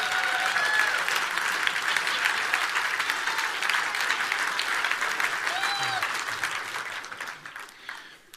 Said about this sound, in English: I just said you got re-engaged. That's why everybody's clapping for you. No, I'm just kidding. They're just appreciating you for being their pastor.